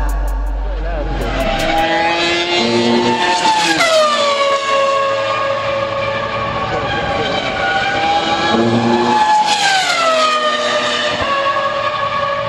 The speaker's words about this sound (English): Yeah, we've captured those sounds, the sounds of cars at Le Mans,